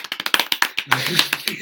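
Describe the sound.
Two people clap their hands in a quick, fairly steady burst of sharp, bright claps lasting under two seconds, with a voice briefly sounding over the middle of the applause.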